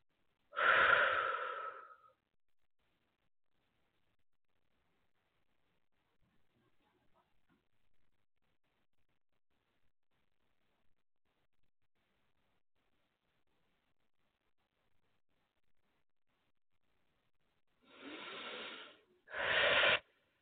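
Deep breathing during a healing session: a deep, airy breath opens, then a long stretch of near silence before two more breaths, an inhale and an exhale, arrive at the end. No one speaks.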